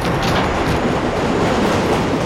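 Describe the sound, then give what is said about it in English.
An MTA subway train shoots past through a tunnel with workers' alcoves, a loud, steady rumble with rattling wheel clatter, no voices present. “Those little nooks for MTA workers to shelter in when trains go by.”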